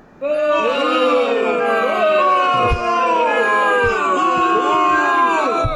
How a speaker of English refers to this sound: Be like, damn you, Corona. Yeah, let's get a boo for the Corona.